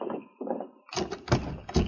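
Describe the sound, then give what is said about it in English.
The locked door of an express office is shaken hard in several loud, rattling jolts, right after a brief muffled voice-like sound at the start. “Door's still locked.”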